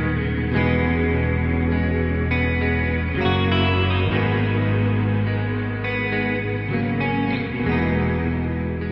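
After a build in a song, a guitar drenched in reverb and effects plays a sustained, swirling part with washy chords ringing into each other, loud and steady throughout with no voices.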